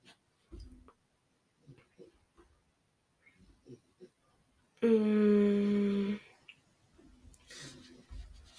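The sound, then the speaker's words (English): A dog snores with one loud, rasping, throaty snort lasting over a second, surrounded by quieter snuffling breaths and soft rustles. No one speaks. “Sorry if you can hear my dog snoring.”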